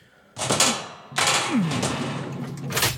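A heavy mechanical clunk, then a second jolt that settles into a steady grinding rumble as an elevator door slides open, with a faint squeal partway through.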